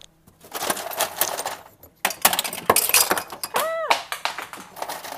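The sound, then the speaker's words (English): Ice cubes for a Bloody Mary clatter and clink into a glass in a quick jumble of bright, hard knocks, followed by a pause and more rattling, with a ringing glassy chime near the end. “First, I'm going to get a glass. And I'm going to get some ice.”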